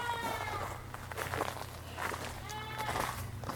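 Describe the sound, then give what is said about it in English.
A goat standing on a picnic table in an overgrown yard full of blackberries bleats repeatedly in wavering, almost human-sounding cries, with a steady low hum and some shuffling footsteps in the background. “Can you hear the goat?”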